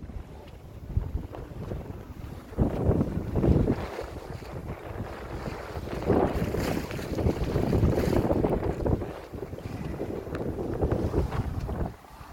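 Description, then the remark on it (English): A boat moves steadily across open water on the bay, with wind buffeting the microphone and water rushing and splashing against the hull in a continuous wash of noise. No one speaks. “So here's a couple of video clips that I took on the boat.”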